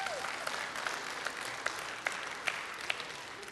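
A crowd applauds in a steady wash of claps, with sharper individual claps punctuating it roughly every half second. The sound is moderately loud and there is no talking.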